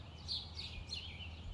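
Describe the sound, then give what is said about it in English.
Several small birds chirp and tweet in quick overlapping bursts during a feeding frenzy among swans and other birds, fairly faint, over a steady low outdoor rumble with no talking. “A feeding frenzy ensues, with the larger birds eating the food at their leisure, while the smaller birds dart in and out, wary of pecks from the swans and other birds, occasionally reeling as a beak makes contact.”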